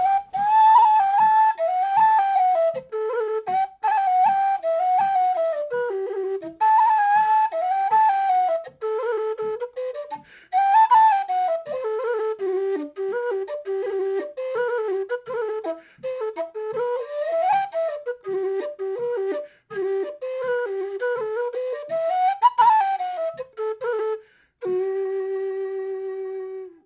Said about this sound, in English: This is Sporting Pat. You can really hear the similarities to these tunes. We'll just do a quick little ditty version of this on whistle. So this is Sporting Pat from O'Neill. This is O'Neill's Irish Music from 1915.